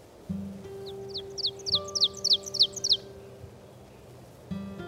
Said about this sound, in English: The oven bird, sometimes called teacher bird, from its song.